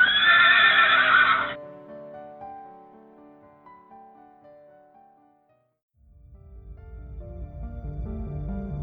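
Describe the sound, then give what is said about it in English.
A loud horse whinny bursts out at the start and trails off into a ringing fade, followed after a brief hush by a low, steady clatter of hooves clip-clopping. “Theodore Roosevelt, good old President Teddy Roosie, had hunting guides who used horses trained to follow their noses to buffalo.”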